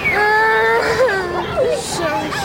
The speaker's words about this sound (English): Because there is a child crying here